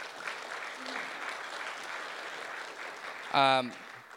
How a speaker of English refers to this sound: Can we just give them a round of applause, please?